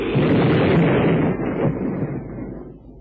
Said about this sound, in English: Well, what a caper. His boat blew up.